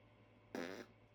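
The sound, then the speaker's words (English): A single loud raspberry blown with the lips, a short wet buzzing burst lasting about a third of a second against quiet background hum, with no talking. “It wasn't a fart. It was a blowing raspberry.”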